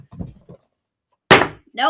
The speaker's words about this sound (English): Nope. There it is. Slam the door in his face.